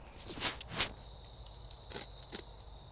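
An ice cube being crunched between teeth: a quick cluster of loud, crisp, crackling bites, followed by a few softer, scattered crunches. No one speaks, and a faint steady whine sits underneath.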